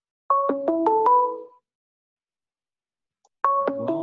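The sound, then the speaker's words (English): A phone ringtone plays a short melodic phrase of stepped electronic tones, goes quiet for about two seconds, then starts the same phrase again; loud and without any talking. “Is your phone ringing? Mine is it.”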